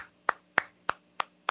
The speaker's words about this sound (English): Yes. I'm going to clap because I'm glad Anthony Gangone has won both titles.